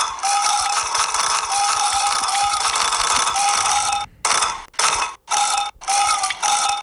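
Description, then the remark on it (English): A multiplayer video game's cow-milking sound effect that changes with where the milk lands: a loud, steady hissing squirt of milk runs for several seconds, then breaks into four or five quick spurts with brief gaps. No one speaks. “Are different udders making different noises?”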